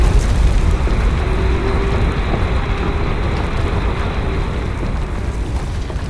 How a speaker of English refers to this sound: Oh, it's some kind of subterranean vehicle with a drill bit in the front. That is not my ground serpent. The technology is similar, but who could have acquired it?